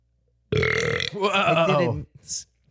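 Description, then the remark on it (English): A loud, drawn-out burp rumbles for well over a second, its pitch rising and warbling partway through, followed by a short breathy exhale. No one speaks over it. “Excuse me.”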